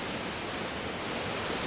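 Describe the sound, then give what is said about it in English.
Steady, dense rush of the Eight Mile River dashing against rocks below a trail in Devil's Hopyard State Park, southeastern Connecticut, with mist rising, filling the whole clip at an even, moderate level with no voices. “The trees are dense, the path is narrow, and everywhere there's the sound of water.”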